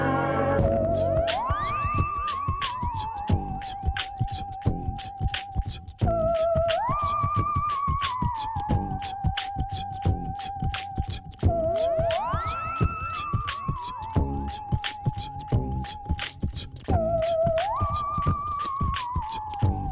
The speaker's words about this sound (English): I think that might be my sirens. Definitely. I'm here in Boston on the 16th floor and my window is closed. Somehow I can still hear those sirens.